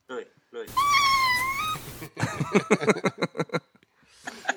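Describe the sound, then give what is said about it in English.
A single long, drawn-out cat meow, loud, wavering in pitch for over a second, then followed by a burst of people talking. “It was a cat.”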